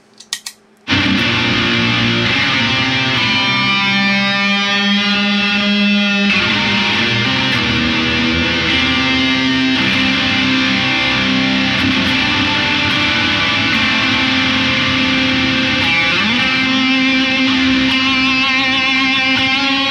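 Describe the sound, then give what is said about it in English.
Overdriven electric guitar through the Super Atmod, the Noble Screamer's Screamer side, the Dan, the Halo, the Caverns, Delay and Reverb, and Echoes, all on; sustained chords and notes smear into a loud, continuous wash of echoes for the whole stretch, with no talking. “And then if we add the Dan into the mix, where all four circuits, the Super Atmod, the Screamer side of the Noble Screamer, the Dan and the mix side of the drive, the Halo, the Caverns, Delay and Reverb, and Echoes are all on.”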